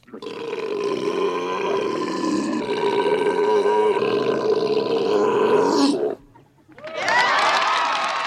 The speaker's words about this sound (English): I'm going to keep it classy and professional by just playing the burp clip without such a ruse.